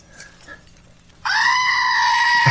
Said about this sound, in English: Screaming goat. That's what I asked for Christmas. I asked for a screaming goat for Christmas. They got me this damn thing. But I love it. This works so good. I'm going to put it in a song.